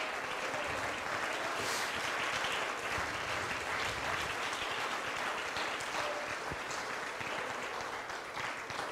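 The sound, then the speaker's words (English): An audience, standing on their feet, claps to thank God for his word in a dense, sustained wash of applause that holds at an even, loud level for the whole stretch, with no speech rising above it. “Let's all stand on our feet and clap our hands and thank God for his word.”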